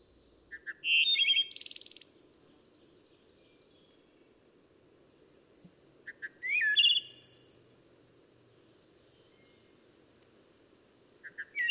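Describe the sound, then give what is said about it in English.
A wood thrush sings fluty, ringing phrases that end in high, buzzy trills, repeated with long pauses between. The song is clear over a low, steady background hum. “But the crowning glory of all these robins, flycatchers, and warblers is the wood thrush.”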